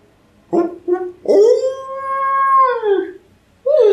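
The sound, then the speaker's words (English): A canine, like a direwolf, yips twice in quick, high-pitched bursts from further down in the distance, then lets out a long, mournful whining howl that slowly falls in pitch, like a sad puppy, before another yelp begins. No one speaks. “This yipping coming from further down, like direwolf.”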